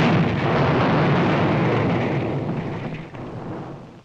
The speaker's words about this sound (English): when giant quakes threatened to destroy Krypton forever. One of the planet's leading scientists, sensing the approach of doom, placed his infant son in a small rocket ship and sent it hurtling in the direction of the Earth just as Krypton exploded.